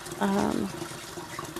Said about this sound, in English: hold on, let me fill this up. I fill a coffee pot with water, run it through the coffee maker to get hot water. So that is what I am doing.